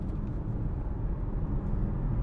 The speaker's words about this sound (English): As you can hear, the noise of the car is pretty minimal. There is some road noise as you hear the tyres going across the road, and maybe a little bit of wind going past the mirrors, and that's about it.